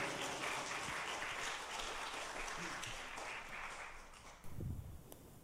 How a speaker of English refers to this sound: I'm going to ask him to come, and let's give him a hand clap of appreciation this morning.